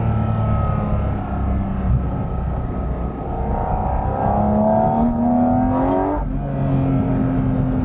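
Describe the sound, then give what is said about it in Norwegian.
A car engine revs hard and steadily up to 9000 rpm, its tone climbing in pitch until a sudden drop at a gear change, then pulling again at a lower pitch, as the driver runs through the gears up to sixth. No one speaks. “Du bara tömmer gir efter gir, 9000 omdrejningar, girer och girer och du bara susar av sted, total kontroll.”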